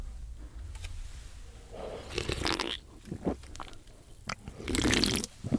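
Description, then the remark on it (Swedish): Wet mouth sounds of someone drinking a beverage in three gulping sips separated by short pauses, each followed by a soft swallow against quiet background noise. “Där har ni John Jansson klåpares dag i tre klunkar.”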